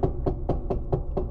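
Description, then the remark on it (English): A steady series of about seven firm knocks, evenly spaced roughly a fifth of a second apart, each a dull, solid thud over a low background hum, with no talking. “That's the FBI knocking.”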